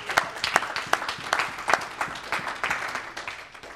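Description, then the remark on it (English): An audience claps together, a steady patter of many hands with sharp peaks roughly every few tenths of a second, moderately loud and without any voices over it. “Oh, you can go ahead and clap right there.”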